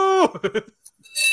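A short burst of shouted speech, the word "PayPal!", then a single bright bell strike that rings out with sustained high metallic overtones. A steady tone fades out at the very start.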